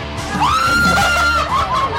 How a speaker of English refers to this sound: That's the loudest I've heard you scream in a very long time.